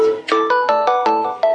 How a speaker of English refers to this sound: You make little tones... if it'll work. I think I crashed my iPhone. Oh, no, I didn't. No, there it was. It's basically you just do tones.